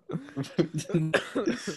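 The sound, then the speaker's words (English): Several short, loud coughs from two people burst out in quick succession right against the microphone, a little rough, with voiced, throaty edges between the bursts. “Damn, both y'all coughing on the mic?”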